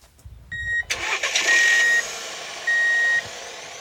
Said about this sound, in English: Okay, back up a little more. That's good. Kill the engine.